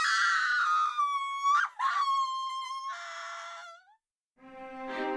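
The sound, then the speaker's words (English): A woman, a cook who has been horribly burnt, shrieks in pain, loud, with long, shrill, wavering cries that break briefly, then a short silence before one last anguished wail. “helped get Cook to her room, with the poor woman shrieking in pain the whole time.”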